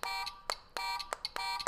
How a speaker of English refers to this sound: So you gotta do this. Sound effect buzzer.